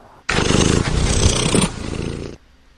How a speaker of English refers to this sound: Aww. Kitty.